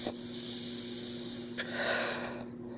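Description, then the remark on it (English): A long, steady airy hiss of someone inhaling vapor from a dab rig, with a faint low hum and a couple of soft clicks. No one speaks. “But yeah, I'm gonna hit this fucking dab one more time.”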